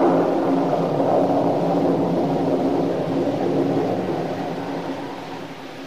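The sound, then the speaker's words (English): A long, heavy rumble of rolling thunder as a storm that had been gathering strength finally bursts, steady and deep for several seconds before slowly fading away, with no voices present. “As she turned and walked heavily upstairs to her room, the storm, which had been gathering strength, finally burst in all its fury.”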